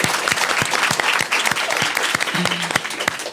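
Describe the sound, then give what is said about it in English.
An audience claps steadily, a dense wash of many hands with sharp individual claps standing out, and a brief cheer or whoop rising partway through. “Let's clap for that.”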